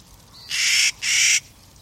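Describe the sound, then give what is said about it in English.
Two harsh, grating Clark's nutcracker calls in quick succession, high in the mountains near treeline in the western United States, each about a third of a second long and fairly loud, with a brief pause between them and quiet background otherwise. “High in the mountains near Treeline in the western states, a Clark's nutcracker folds its wings and dives.”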